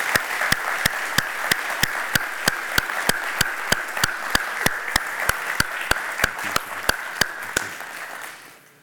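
A church audience applauds steadily to thank the boomers among them, a dense wash of many hands clapping with a few sharper individual claps standing out in a regular beat, fading away at the end.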